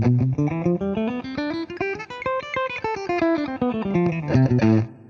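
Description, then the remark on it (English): A distorted electric guitar plays a fast, smooth legato run of hammer-ons and pull-offs across the G, B and high E strings, the notes climbing steadily in pitch and then sliding back down, with no picked attacks and no talking. “So what we're going to do is a little hammer-on pull-off sequence. This is called legato.”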